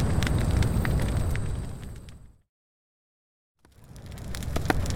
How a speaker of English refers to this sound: The flames are getting closer.